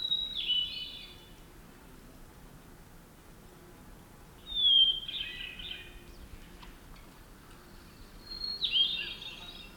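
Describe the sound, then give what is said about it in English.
A hermit thrush, hidden in thick understory beneath towering Douglas firs at a campground near the mountains, with a light breeze, sings three separate flute-like phrases, each a clear opening note sliding into a fluttery, ringing trill, spaced a few seconds apart against a quiet background with no talking. “A light breeze blows through the canopy of towering Douglas firs, and I hear a pleasing flute-like song. A hermit thrush, hidden somewhere in the thick understory.”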